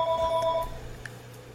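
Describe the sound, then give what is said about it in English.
A brief electronic phone alert tone signalling an incoming phone call: a steady, pitched beep lasting just over half a second, then cutting off and leaving a low background hum. Fairly quiet, with no one talking. “There is basically a phone call. Wait, is that your phone or my phone?”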